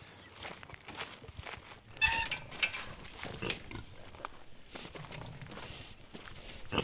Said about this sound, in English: We are walking towards a paddock and we're passing some more of your saddlebacks and they are munching away at something.